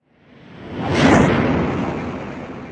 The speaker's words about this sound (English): With a loud whoosh that knocked small grey figure off his feet, the Night Cat ejector lift shot Night Cat up on roof of mansion